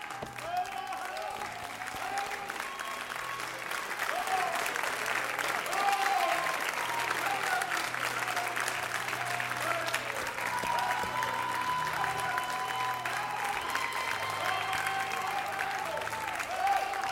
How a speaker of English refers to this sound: And why don't we just give a God a great big worshipful applause and a praise and say to God, God, I trust you.